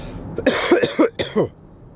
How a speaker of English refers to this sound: Sorry about the cough here.